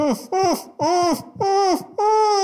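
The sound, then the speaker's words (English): Muffled screaming through a gag: a gagged clown named Floof, being fed to squid lions, lets out five loud, strained wails in quick succession, each bending up and then down in pitch, with short gasping breaks between them. “Ah, yes, I took the liberty of gagging Floof. You know how loud these clowns' screams can get.”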